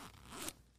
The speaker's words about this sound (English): With my little gear. You know, zip it up.